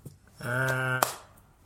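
A single sharp hand clap snaps out, hands clapped onto someone's tongue in a doctor's office scene, abruptly cutting off a sustained open-mouthed vocal tone, followed by quiet shuffling.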